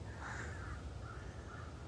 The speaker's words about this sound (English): Raven overhead. Love this. Oh, crow. That was raven. It's okay. Oh, maybe both. Anyway, the sound of the wings always moves my heart.